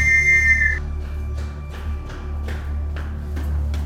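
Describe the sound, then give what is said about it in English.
A single shrill, steady whistle blast rings out for just under a second, followed by a run of quick footsteps over a constant low rumble. “The whistle comes again.”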